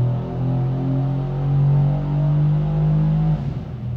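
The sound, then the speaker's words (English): The twin-turbo V8 engine of a C63 car, tuned with downpipes to about 520 horsepower at the tyres, rumbles in a deep, steady drone, its pitch swelling slightly as it revs, then cutting off abruptly just before the end. “Well, listen to this. That's a twin turbo C63 right there.”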